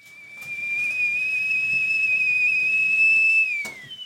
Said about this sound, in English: The tea kettle announces it's time for dessert.